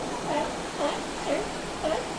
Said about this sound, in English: Greetings from La Jolla Cove. As you can hear, the sea lions are a bit rowdy today.